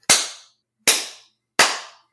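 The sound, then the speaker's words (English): Three loud, sharp hand claps at a slow, steady pace, each snapping crisply and ringing out briefly before the next. No voices. “All right, maybe I should clap.”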